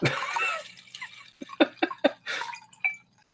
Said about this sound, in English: I'm just pouring another glass of wine.